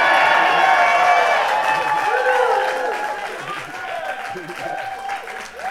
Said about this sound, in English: They like that one. It says here, extra pause for applause.